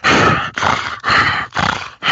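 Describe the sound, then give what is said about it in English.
A voice imitates a horse breathing heavily: four loud, raspy huffs in a steady rhythm, each about half a second, with no talking; imitating the horse from the scene where Peter buys a horse that breathes over Stewie. “It's when Peter buys the mentally challenged horse, and he's in the house, and he starts breathing over Stewie, and he's going like.”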